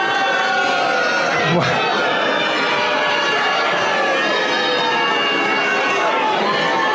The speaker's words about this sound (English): Anyone who ever tells you that, just play them this clip of Lindsey Graham getting booed despite Donald Trump telling the crowd he's a great guy.